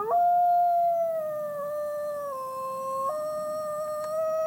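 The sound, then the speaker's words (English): A single Mexican gray wolf in the Gila holds one long, steady howl, its pitch sliding down slightly and wavering before lifting again near the end, clear against a quiet background. “The wolves are one of the most extraordinary things about the Gila.”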